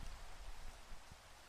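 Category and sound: nature, rain falling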